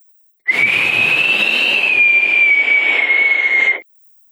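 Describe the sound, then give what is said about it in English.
One loud, harsh whistle held for about three seconds, staying close to a single pitch with only a slight waver, and a rough, breathy hiss underneath. No one speaks. “The giant, in the meantime, thought to himself, oh, I'm going to whistle myself a nice little tune. He started whistling, and it went like this.”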